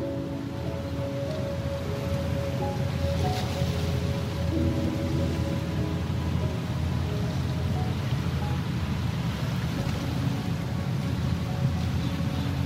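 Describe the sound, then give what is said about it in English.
Ship traffic heard in the distance from a dam facing the sea in Singapore: a steady low engine rumble with faint droning hum tones, carried under a constant wash of wind and water noise, with no voices. “As we face the sea, the sounds of ship traffic can be heard in the distance.”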